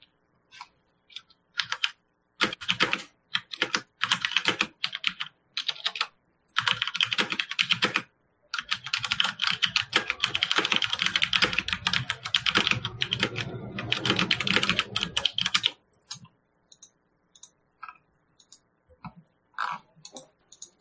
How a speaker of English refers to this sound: we can hear you typing and clicking